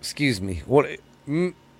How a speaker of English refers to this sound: Got the hiccups. Excuse me.